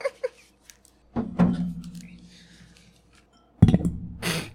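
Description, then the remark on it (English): A drinking glass knocks against a microphone with two loud, boomy thuds about two seconds apart, preceded by a couple of faint taps and followed by a brief rustle. “Nailed the microphone with my glass.”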